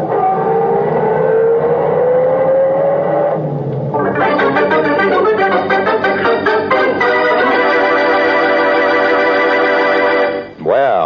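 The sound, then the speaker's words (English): A car engine revs and climbs steadily in pitch for a few seconds as it pulls away, then a loud, dense burst of sound takes over and holds to the end. “Help me get him into the car. Come on. Let's get out of here.”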